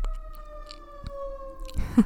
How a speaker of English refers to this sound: When life happens and there's a siren going right outside of my window. Sorry, guys.